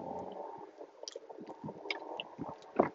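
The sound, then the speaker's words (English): Wet gulping and swallowing as someone drinks water, a series of soft squishy throat sounds with small clicks, fairly quiet and with no talking. “I'm sorry, just took another drink of water.”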